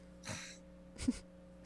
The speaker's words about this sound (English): So you breathe in through your nose, and then you're going to just slightly constrict your throat. And on your exhale, it's almost going to sound like an ocean wave, hence why it's called ocean breathing.